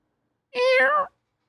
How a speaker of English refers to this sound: Firstly, the cat's meowing seems quite unnatural, suggesting that someone or something was imitating these sounds.